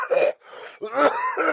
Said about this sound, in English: I didn't like the sound of that, nor the sound of his coughing.